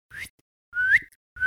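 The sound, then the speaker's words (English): A person whistles three short, breathy notes to call dogs, the middle one longer and sliding upward in pitch, with brief silences between them and no talking. “Oh, man, I'm not good at whistling.”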